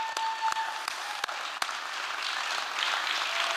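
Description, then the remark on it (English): An audience at the Liberty Theater in Astoria, Oregon, on February 25, 2023, claps steadily after a Fisher Poets set, a dense patter of many hands that swells slightly toward the end, with a few sharper individual claps standing out early on and no voices. “And also, I'd just like to give Danny, Lou, and Mary another big round of applause for a wonderful set.”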